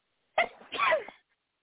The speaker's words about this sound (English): ain't that the cutest little sneeze you ever heard in your life, dude? Like, for real.